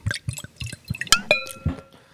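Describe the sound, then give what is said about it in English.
Wine splashes into a glass in a quick series of glugs and drips, with a bright clink and a short ringing tone from the glass partway through. “You like pouring in the closet for silent purposes?”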